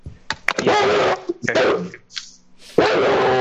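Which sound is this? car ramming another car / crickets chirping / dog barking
dog barking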